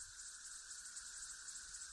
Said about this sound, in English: This massive chorus of male cicadas.